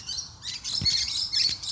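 Rainbow lorikeets in a tree screeching, a dense flock chorus of harsh, shrill, overlapping calls that carries on without pause, fairly loud, with no talking.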